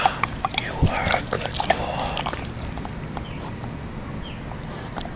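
A dog gnaws on a hard, marble-like antler, making a busy run of sharp clicking, scraping crunches that thin out into sparser, irregular taps after a couple of seconds.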